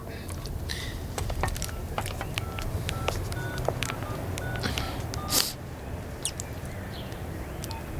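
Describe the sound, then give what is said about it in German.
A mobile phone keypad being dialed outside police headquarters: a series of short, clear beeping tones tapped out one after another at an uneven pace, over a steady outdoor rumble of traffic. “Draußen vor dem Polizeipräsidium hatte Karl sein Handy hervorgeholt.”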